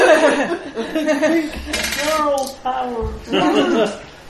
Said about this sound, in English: One bad dice roll versus another. Pink dice! Yeah, pink dice!